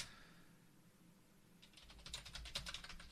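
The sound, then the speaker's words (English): Rapid clicking keystrokes on a computer keyboard start about halfway through: a quick irregular burst of typing the word "Rebecca" after a quiet stretch of faint hiss. “Oh, there's Rebecca Vardy, and I'm typing in the word Rebecca.”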